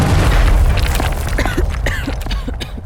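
A heavy door inside an ancient maze drops down and crashes with a loud, deep boom, followed by a low rumble and a few sharp metallic clanks as it settles.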